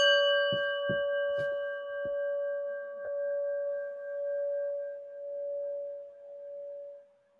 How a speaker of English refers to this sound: So with that, friends, let's get a little breath. And listen to the bell.